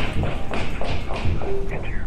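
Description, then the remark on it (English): Heavy clomping footsteps of several people somewhere above, quickly approaching, thud in a quick, steady rhythm, about six solid impacts over two seconds, fairly loud against a dull, muffled background. “The sound of multiple clomping footsteps somewhere above us suddenly found new direction, quickly getting closer.”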